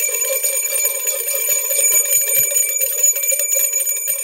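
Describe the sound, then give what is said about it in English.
A loud bell rings twice with bright, sustained overtones that shimmer and linger for several seconds, with no voices. “It's a Two Bell Fat Tuesday, for goodness sake.”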